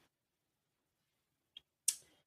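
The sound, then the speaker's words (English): A soft paper rustle: a small tick, then a brief, airy swish as a page is turned by hand, trying to do it quietly, fading quickly with no voices. “Sarah's turning the page on her hand”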